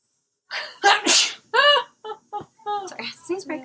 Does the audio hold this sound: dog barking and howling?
no